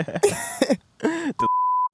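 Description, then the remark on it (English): A man's voice makes a couple of short, groaning vocal sounds, then a loud, steady censor bleep tone cuts in for about half a second and stops abruptly. “I have to remember to beep that.”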